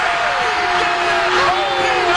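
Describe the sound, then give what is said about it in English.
A dense crowd roars and yells continuously at a basketball game, a loud wall of cheering voices with a few rising shouts and whoops cutting through the steady din. “It's nice to have that, get that yell going. This is what it sounded like earlier.”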